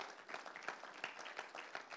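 A church audience applauds during a sermon with dense, steady clapping, many hands overlapping into a continuous crackle with sharper individual claps popping out at a moderate level.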